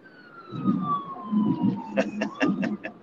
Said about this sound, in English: We're recording. I'm out here on the road and it's happening all the time. 5-0. That was an ambulance, not a fire truck this time.